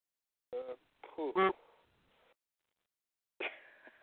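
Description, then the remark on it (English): A series of honking, squeaky fart noises, a few quick bursts followed by a short pause and then another brassy, horn-like blast, fairly loud. “Sounds like a bicycle horn. Sounds like a duck, too. Excuse me, I had too many beans for me.”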